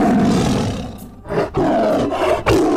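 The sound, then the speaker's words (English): A tiger roars loudly and up close in a few rough, growling bursts with brief breaks between them, heard on its own with no talking. “But to everyone, he is the Jungle Tiger.”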